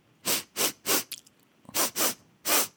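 Six quick, sharp sniffs in two bursts of three, each a short breathy hiss through the nose, with a few faint clicks between the groups and no talking.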